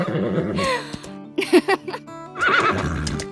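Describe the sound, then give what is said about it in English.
A horse whinnies loudly, a shaky, wavering neigh that breaks into a few sharp snorting bursts before a second quavering whinny trails off. “We got a whole new horse library because in that show, there's three characters who are horses, so there are no actors voicing them.”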